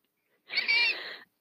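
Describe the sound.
A single shrill, raspy bird-like screech lasting under a second, made by a human voice imitating a bird call, loud, followed by a brief faint sound.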